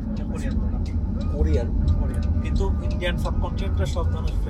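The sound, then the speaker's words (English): A family's car engine rumbles steadily as they drive off back to Laramie, a constant low road drone filling the background while people chatter indistinctly. “But he doesn't have to worry about that anymore as his family gets in the car to drive back to Laramie.”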